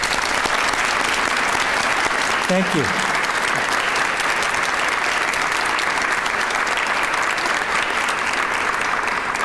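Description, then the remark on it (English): An audience claps steadily in loud, dense applause, a welcome round of applause for a group that has just performed, continuing for the whole stretch, with a single voice briefly speaking over it early on. “So they immediately performed, so I wish we would extend them a welcome round of applause again.”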